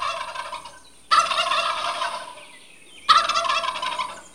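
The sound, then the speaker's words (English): A turkey gobbles loudly, three rapid rattling bursts, with two sharp onsets about two seconds apart and no voices around. “Wait, I think that's a turkey.”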